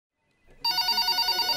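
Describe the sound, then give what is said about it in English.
A telephone bell rings loudly, starting abruptly after a brief quiet lead-in and continuing as a rapid, rattling trill with no voices; calls coming in to the Detroit Lions headquarters. “After the radio ad, Lions headquarters gets bombarded with phone calls.”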